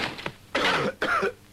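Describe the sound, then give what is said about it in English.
Two harsh, raspy coughs in quick succession, fairly loud, with a brief pause between them and no talking around them. “No matter how strong a man is, a cough can still get the upper hand.”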